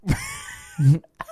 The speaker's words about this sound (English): Great, a fart.